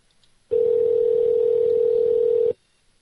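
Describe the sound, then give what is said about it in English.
A single steady electronic ringback tone from an outgoing phone call, one unbroken two-second burst at a fairly loud, even level, with silence before and after and no voices. “If this guy doesn't answer, I'll tell you what he said.”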